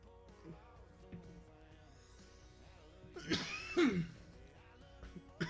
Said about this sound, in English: If you cough in the mic, it's totally unprofessional after a dab. If you cough in the mic, it's unprofessional. So I'm just showing you guys what not to do.